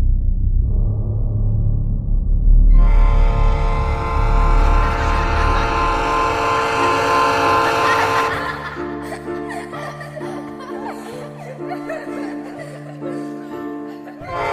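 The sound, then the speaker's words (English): A low rumble builds into a loud, sustained train horn, then gives way to a steady rhythmic chugging of wheels on track, prominent, with no talking. “You're a train!”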